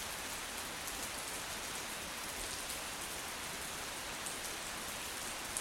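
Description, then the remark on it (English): Steady rain falling while camping in Fundy, pattering on a surface, a continuous dense hiss of drops with no voices, even throughout. “And we're stuck in the rain in Fundy.”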